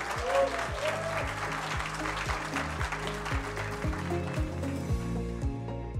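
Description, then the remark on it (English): A crowd at the Great Retention's live event at the Atlanta Tech Village breaks into sustained applause for the day's leaders, dense overlapping clapping that stays loud and steady for several seconds before thinning slightly at the end. No one speaks over it. “And one more round of applause for our leaders today.”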